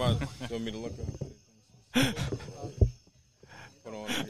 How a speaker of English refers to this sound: Yo, stop breathing in the microphone, dude. It's making everybody uncomfortable. I know you've never done a podcast where everybody can hear you, but everybody can hear you.